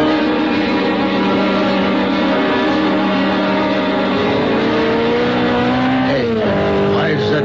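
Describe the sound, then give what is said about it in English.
A sports car's engine roars loudly and steadily at high speed, close to 90 or 100, heading west on Trumbull, its pitch sweeping and dropping sharply near the end as it tears past. “The sports car looked like a Simonetti. I couldn't tell. Went by me too fast. Must be doing close to 90 or 100.”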